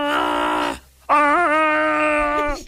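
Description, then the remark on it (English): A man's voice imitates the growling of Chewie in two sustained, strained bursts, with a short pause between them. The second burst wavers in pitch and is louder. Nothing else is said. “He does some kind of growling noise.”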